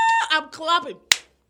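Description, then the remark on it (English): A voice makes drawn-out vocal sounds, then one sharp, loud hand clap cuts in and quickly fades to quiet. “I'm clapping.”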